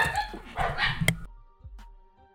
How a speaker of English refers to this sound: his unprofessional setup, as usual, is picking up external audio from his dogs.